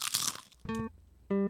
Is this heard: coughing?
no